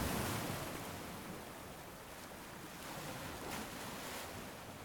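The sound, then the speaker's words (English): Soft, continuous wash of water with gentle swells rising and falling, quiet and steady, with no voices and no other distinct sounds. “There was no other sound than the soft push of water.”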